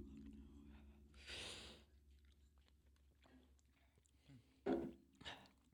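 Slow chewing of a habanero-flavored jellybean: a few soft, wet bursts of mastication spaced out over several seconds, with quiet pauses and a low background hum and no talking.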